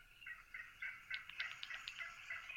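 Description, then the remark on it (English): A recording of a real wild turkey hen, played from an app, calls in a steady run of short, raspy yelps, a dozen or so quick notes in a loose rhythm, moderately loud and heard alone without any talking. “And then he's got the real sound. So here's a real hen.”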